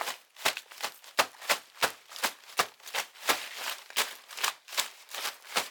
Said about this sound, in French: Des bruits de pas.